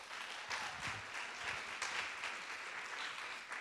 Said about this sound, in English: So give Chloe one more round of applause.